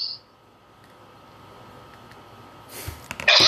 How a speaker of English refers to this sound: Bless you. Bless you. Thank you. And it's got to be all that extra hair on your face as to why you're sneezing.